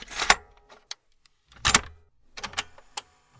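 Inside a parked car, keys jangle in a few short, bright bursts separated by quiet gaps, with small clicks and rustles between them and no talking, recorded on an iPhone.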